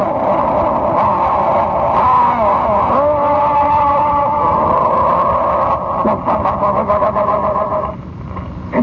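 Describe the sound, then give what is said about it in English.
A loud, continuous roar of many racing car engines, including Ferraris and Maseratis, revving together at the start of a race as 76 cars accelerate off the line toward the first turn, pitch rising and dipping, with no one speaking over it. “And the first great roar of the charging, the enormous explosions of these engines, crack the magnificent, the whole panorama wide open.”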